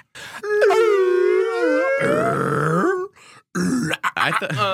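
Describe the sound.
A person imitates a whale call with long, sliding moaning wails that rise and fall in pitch, loud, followed by a shorter burst of strained vocal noises.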